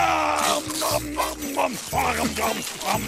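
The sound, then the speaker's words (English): A gruff, cartoonish Cookie Monster voice growls and chomps in quick rhythmic bursts, loud, imitating greedy cookie-munching eating noises with no ordinary speech. “That was the Cookie Monster doing his thing.”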